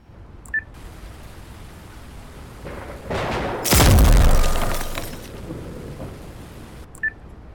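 A loud explosive blast from an explosive hurled onto a lightning rod builds from a rising crackle into a heavy, rumbling boom that fades over a second or two, set against steady hiss, with short electronic beeps near the start and end.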